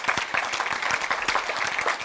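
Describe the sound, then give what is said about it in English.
An audience claps their hands together at a preacher's call, a dense, steady patter of many overlapping claps with sharp transient spikes throughout, sustained and fairly loud with no speech. “Somebody clap your hands like you know what I'm talking about.”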